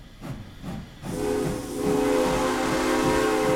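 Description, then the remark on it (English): An old-fashioned steam locomotive chuffs rhythmically, then a loud hiss of steam bursts out and a long, steady steam whistle sounds over it, sustained to the end. “Now, think of it specifically as an old-fashioned steam train.”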